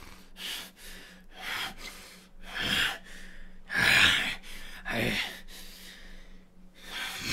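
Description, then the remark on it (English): Heavy, ragged panting, a run of loud breaths in and out with harsh gasping peaks, growing stronger in uneven bursts with no talking. “His panting starts a little stronger.”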